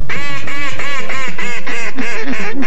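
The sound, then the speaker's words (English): A mallard duck quacks loudly in the fall air, a rapid run of about eight harsh, nasal calls in a steady descending series, with no voices or other noise. “Mallard.”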